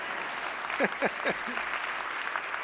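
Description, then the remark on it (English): Steady audience applause, a dense wash of many hands clapping at once, with a voice briefly speaking over it partway through. “Some of you aren't clapping.”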